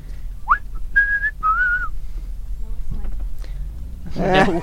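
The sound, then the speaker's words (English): Someone whistles a short, clear melody of a few rising and sliding notes over a low engine-like rumble, followed by a brief burst of voice at the end. “No whistling?”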